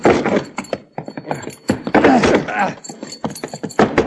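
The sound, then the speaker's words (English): Repeated heavy thuds of bodies slamming into a locked door in an attempt to break it open, uneven in rhythm, mixed with straining grunts and voices. “Let's see if we can break it open.”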